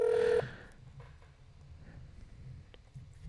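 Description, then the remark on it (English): A loud, brief electronic ring tone sounds once over a phone line on a call to Public Broadcast's resources line, which goes to voicemail. The ring cuts off after a fraction of a second, leaving faint hiss and low rumbling line noise. “So now it's ringing. It's ringing. It's coming through.”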